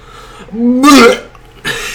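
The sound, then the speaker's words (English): A loud burp rumbles straight into the microphone, low and drawn out for about a second, followed by a burst of breathy noise afterward. “We're gonna need to get a Belch filter.”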